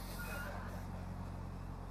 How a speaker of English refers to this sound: If you're online, there's a truck going by us right now. Makes a little bit of noise. Not bad though. He could honk and that would make it interesting.